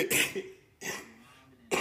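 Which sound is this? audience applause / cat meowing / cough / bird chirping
cough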